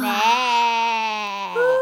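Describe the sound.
A goat in a forest lets out a long, drawn-out bleat, fairly loud, its wavering tone sagging slightly before a brief shift in pitch near the end, as a few goats pass by yawning.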